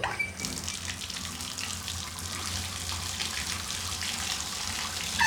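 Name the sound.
shower water running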